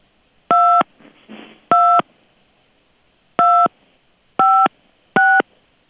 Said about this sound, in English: With the phone pad, please spell your last name after the tone. Boop.